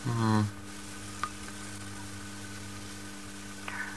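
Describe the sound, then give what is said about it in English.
A tape recorder gives a short, loud, buzzy squeak at the start, then runs on with a steady low hum and a constant sizzling hiss. Two faint clicks follow. “I was just wondering what that squeaking noise was. It was the tape recorder.”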